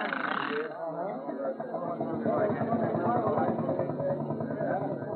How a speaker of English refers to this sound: The steam engine's engine is all fired, Elmer. You can start any time you want to.